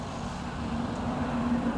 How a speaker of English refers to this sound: Hold on, here comes a bus. I have to get between these trees. It's a school bus.